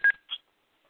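Two quick electronic tones from a phone keypad, a sharp beep followed by a slightly higher, softer one, with silence after.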